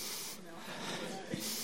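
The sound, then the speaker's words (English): Breathy sniffing: a couple of airy inhalations through the nose, hissy and fairly soft, with a brief quieter gap between them and no talking. “Have a sniff.”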